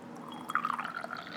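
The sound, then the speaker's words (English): A short, quiet pour of Irish breakfast into a cup, a steady trickling stream with a faintly rising, ringing tone as it fills, with no one talking. “But yeah, we'll go ahead and get like a nice pour for the Irish breakfast.”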